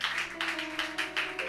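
An audience, asked by the speaker, claps for a man being put in charge, in a steady, rapid rhythm, the bright, crisp claps blending into quick bursts about five per second over a low, constant hum. No one speaks.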